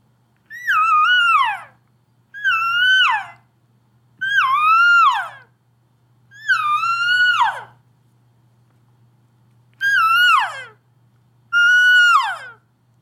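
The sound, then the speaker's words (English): Six drawn-out, nasal elk cow mews, each climbing briefly then sliding down in pitch, spaced by short pauses, with a faint steady low hum underneath and no talking. “when you're in a herd of elk, you're gonna hear like mew, mew, mew, please, please.”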